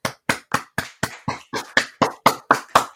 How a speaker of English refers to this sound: Can we just give a quick round of applause to Miss Shonda Rhimes.